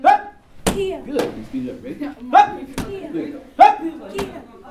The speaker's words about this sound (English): So what they're doing right now is we're in the karate class. And it's like a foam bag to like block and deflect block punches.